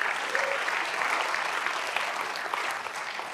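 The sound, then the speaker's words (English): An audience claps steadily, a dense wash of applause that holds at an even, fairly loud level throughout with no voices breaking through. “You can applaud that because it's something we need to put into our hearts.”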